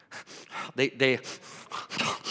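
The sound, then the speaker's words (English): A voice mimics a little kid drinking frantically from a cup, with a rapid series of breathy pants and a couple of throaty, voiced gulps, fairly loud, repeating in an uneven rhythm over about two seconds. “They're breathing in the cup while they're drinking.”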